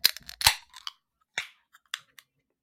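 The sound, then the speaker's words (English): A beer can of IPA cracks open: a quick metallic snap and a short fizzy hiss with only a little spray, followed by a few small, scattered clicks. No one speaks. “In 3, 2, 1, crack.”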